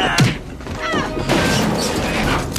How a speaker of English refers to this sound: This scene, particularly, the canned sound effects in it. Oh, there's a lot. Lots of, like, melons being punched and and just generic objects being slammed and shattered, and it's good.